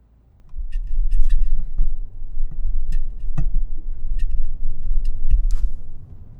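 Steady low rumble of a car interior while driving on a road trip, with road and engine noise throughout and occasional small ticking or clicking sounds; no one speaks.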